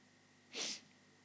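One quick, sharp sniff through the nose by a person whose ear keeps popping, standing alone against a quiet background hum with no talking.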